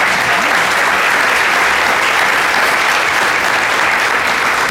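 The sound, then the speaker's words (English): A sustained round of applause from an audience for the featured guests, dense steady clapping filling the full few seconds at a loud, even level with no talking over it. “But first, please give a round of applause for our featured guests.”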